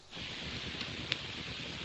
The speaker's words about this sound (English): What is that noise? The deluge. And it rained. And rained.